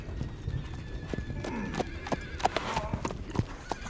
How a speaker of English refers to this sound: 5 men on horseback rode up and bore down on him. He dropped the revolver as he fell to the ground, cradling his shattered knee as the thundering horses and their riders circled around him.